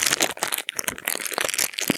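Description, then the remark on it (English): Crisp, irregular crinkling of cellophane wrapper being peeled off a cigar, a steady run of sharp crackles and rustles with no voices. “is getting his out of the cellophane.”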